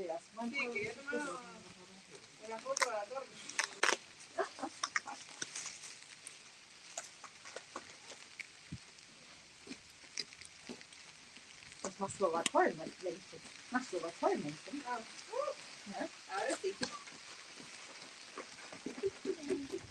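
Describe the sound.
Light rain drizzles steadily in one of the oldest towns, a soft continuous hiss dotted with small scattered patters and ticks, while people talk now and then.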